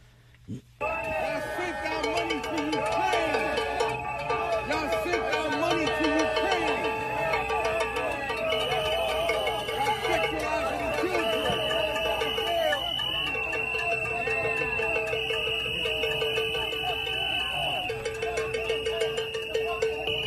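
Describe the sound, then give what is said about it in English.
A loud, dense protest crowd at Collect Pond Park outside the courthouse ahead of the Trump arraignment chants 'lock him up' and shouts nonstop while shrill whistles hold long, steady high notes above the voices for the whole stretch, after a brief quiet opening. “There's the loud noises, the whistles you hear.”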